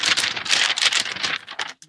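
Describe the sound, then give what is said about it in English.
Continuous rustling and crinkling of business papers being shuffled and handled, a busy flurry of dry crisp sounds that briefly drops out near the end. “You got your paper. You got everything. Business papers.”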